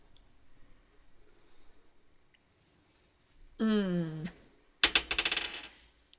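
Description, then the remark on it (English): Dice clatter across a hard tabletop in a quick burst of sharp, rattling clicks near the end, fairly loud, following a short voiced sound and faint soft hissing earlier. “I wonder if it's picking up the dice.”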